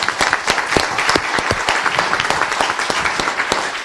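A crowd applauds steadily at a HubSpot partners and ecosystem community event, many hands clapping in a dense, continuous patter, sustained at an even loudness throughout with no voices standing out.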